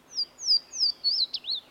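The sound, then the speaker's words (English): A Louisiana water thrush sings a bright, brief song of five or six quick, slurred whistled notes, sweeping down and then looping up at the end, heard alone against a quiet background. “The song of the water thrush is very brief.”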